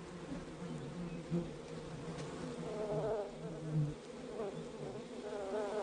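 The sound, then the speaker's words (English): A dense, continuous drone of many bees buzzing around an open hive as a person tries to cover it, wavering in pitch as individual insects fly about, with no voices. “The more bees that get on me, I think the worse situation I'm in.”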